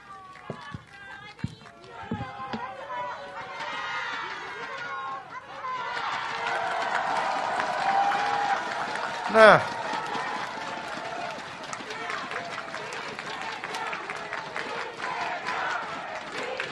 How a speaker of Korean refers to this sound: 후보께서 서약하셨습니다. 약속 잘 지켜주시라고 더 큰 박수로 응원해 주십시오.